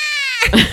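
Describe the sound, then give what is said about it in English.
A person's voice imitates a cat's meow in a short, strained wail, about a second long, loud, with a tonal, harmonic start that turns raspy. “his meows are like a mix between a pterodactyl and a baby crying.”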